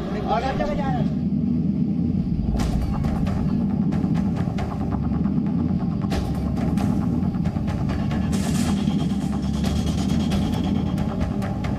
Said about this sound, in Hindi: जब take off हुआ तब इंजन से आवाज आना स्टार्ट हो गई, हमें दिख गया था, then some sparking there, fire is there